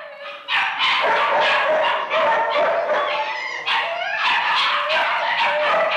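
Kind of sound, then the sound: animal, many dogs barking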